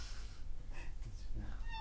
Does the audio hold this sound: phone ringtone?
no